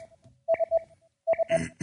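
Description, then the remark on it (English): An incoming phone call alert plays: two quick bursts of three bright electronic beeps, fairly loud, the second burst followed by a short rush of noise. “Ooh, got a phone call.”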